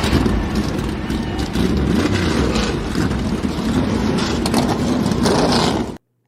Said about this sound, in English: And so he, you know, one of the famous things they do is start your engines. Yeah. And so let's check in and hear the GOAT, Charles Woodson. Daytona, are you ready? Yeah! Drivers, start your engine!